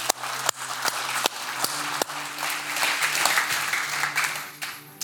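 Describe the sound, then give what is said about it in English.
An audience at a church worship service applauding together in praise of the Lord, a dense, steady wash of clapping with a few sharp individual claps standing out, lasting several seconds at a moderate, even volume. “Give the Lord a hand clap of praise for that.”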